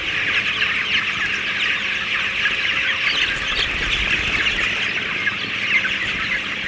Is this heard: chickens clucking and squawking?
yes